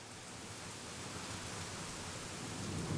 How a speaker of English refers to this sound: Then, near the limits of Butler, Missouri, a heavy rain fell with thunder and lightning to match.